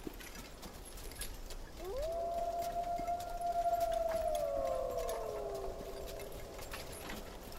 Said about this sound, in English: Twilight descends, bringing with it the distant howls of the wolf.